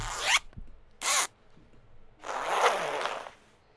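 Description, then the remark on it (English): A large, long, oddly shaped zipper on a sack rasps open in three pulls: two short, quick bursts, then a longer, steadier drag. Fairly loud, with no voices. “Just such a big zipper. It's a large, long, and oddly shaped zipper.”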